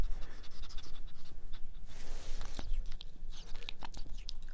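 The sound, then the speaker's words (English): A ferret that has been picked up and held breathes heavily and pants, quick rough breaths running continuously, mixed with rustling and handling noise against the microphone. No one speaks. “That's the noises he's making. Say hello. Was that heavy breathing?”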